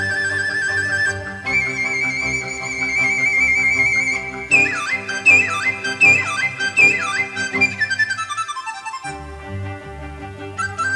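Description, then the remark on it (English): A dizi, a kind of wind flute, imitates horses in a melody composed in 1969, playing a run of quick, high, sliding whinny-like swoops that fall in pitch, over a steady lower musical accompaniment. No one speaks. “Not only birds, but also horses.”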